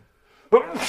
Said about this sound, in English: I'm going to sneeze right now, so yeah, hold on.